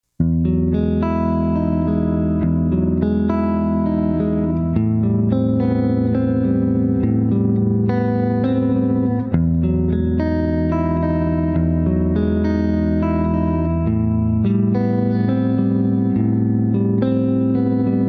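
A guitar plays sustained major seventh chords, strummed and held with a washy, effected tone, changing chords every few seconds over a steady, fairly loud level with no talking.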